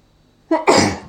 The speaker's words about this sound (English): Oh, I'm going to sneeze.